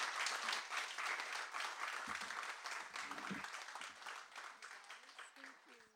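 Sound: audience applause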